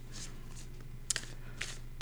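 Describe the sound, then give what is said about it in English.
A deck of tarot cards being shuffled for a tarot card battle game, soft papery riffles and brushing swishes with a few sharper snaps and clicks as the deck is worked, over a steady low hum. “Shuffling again.”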